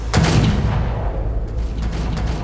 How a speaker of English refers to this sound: The gunshot rings out, echoing loudly off the iron and glass and all the way down to the well of the building, overflowing with drawn guns and fire and water like blood. Silence follows.